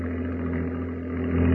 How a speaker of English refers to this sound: Hey, look. There's a plane.